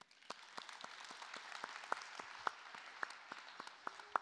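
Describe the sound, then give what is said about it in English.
A church audience applauds steadily for several seconds, many hands clapping in a dense, continuous patter with a few louder, sharper claps standing out, applauding an announcement of next Sunday's 12:15 voters meeting. “You just applauded for that, just so you know.”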